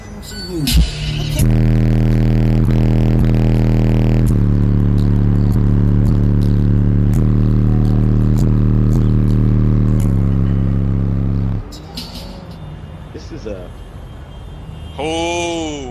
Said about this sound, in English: Yeah, and then, wait. We got to let this car pass.